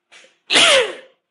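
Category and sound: human body sound, a sneeze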